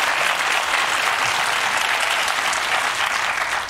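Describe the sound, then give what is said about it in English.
A crowd claps steadily and loudly throughout, a dense, even wash of many hands with no pauses and no voices standing out, tapering slightly at the very end. “clap for ignoring sexual abuse allegations.”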